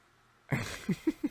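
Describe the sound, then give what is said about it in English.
A dog barks, one harsher bark followed by three short, evenly spaced yelps, somewhat muffled, with no one talking. “Can my dog shut up?”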